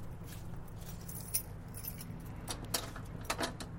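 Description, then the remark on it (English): Keys jangle in a few short, bright metallic bursts, with sharper clinks near the middle and end, over a steady low hum. No one speaks. “What the fuck did I do with that key?”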